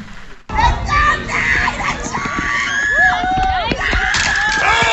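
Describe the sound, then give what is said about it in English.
A crowd at a local track meet erupts in overlapping shouts and screams as a young runner stumbles into a hurdle and falls face-first, several high voices rising in pitch, the noisy cheering continuing steadily after a brief quiet start. “Well, either is this young feller who decided to take a face plant knocker at the local track meet.”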